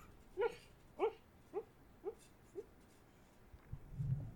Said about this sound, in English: This is where my dog is having a dream right now. I don't know if you can hear it. You think he's having a nightmare about this movie?